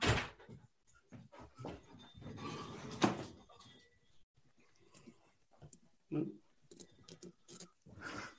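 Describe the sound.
A front door opens and shuts a few times for an Amazon delivery, its thuds and latch clicks fairly loud, with faint muffled voices and shuffling between them.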